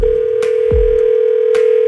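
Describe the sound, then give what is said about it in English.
A steady, unbroken telephone ringing tone drones on an outgoing call placed by radio hosts to a teacher who has won a Chromebook for her classroom, with a few soft clicks and a low thump along the way. No one speaks. “Okay, it's ringing.”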